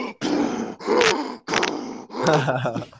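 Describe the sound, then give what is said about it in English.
Loud, heavy breathing right up against the microphone, four harsh, rasping breaths in quick succession, some edged with a low groaning voice. No other sound. “Someone's breathing very loud.”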